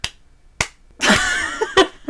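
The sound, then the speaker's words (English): Slow, deliberate hand claps, about four sharp claps spaced roughly half a second apart, with a drawn-out tonal sound swelling between the middle claps. “I need a slow clap.”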